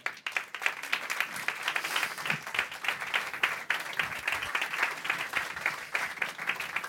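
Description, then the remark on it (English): Sustained audience applause as panelists from Airbnb, Hotel Tonight and Foursquare come on stage. A dense crackle of many hands clapping steadily for the full seven seconds at an even, fairly loud level, with no voices standing out. “Keep clapping, they've got to get on stage.”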